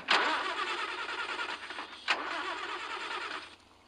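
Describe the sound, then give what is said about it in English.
A car engine, said to whistle, cranks and catches, giving two sharp bursts at the start and midway, then settles into a steady mid-pitched churn before cutting off near the end. No one speaks. “Well, then I'd like you to check my motor. It whistles.”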